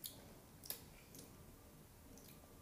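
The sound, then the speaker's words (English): Quiet chewing of an orange slice: a few soft, wet squishes and faint clicks spread irregularly across a hushed background, with no talking. “… just had her orange weird slice. I don't like that. Don't do that again. Bad vibe. Blech. She's actually still eating it.”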